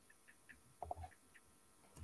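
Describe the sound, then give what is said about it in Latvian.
Soft plastic clicks, two or three in quick succession with a brief light scrape, as a heated tobacco device is opened and its holder pulled out while its indicator light stays on; quiet, no voices. “Taisam vaļā, ņemam ārā, kaut lampiņa deg, viss kārtībā.”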